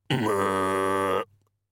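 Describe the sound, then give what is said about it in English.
A voice imitates a pig's grunt: one loud, low, rasping snort held steadily for about a second, then cut off abruptly, with no other sound around it. “One turned to look at him with small red eyes, and didn't go oink, which was the sound that Mr.”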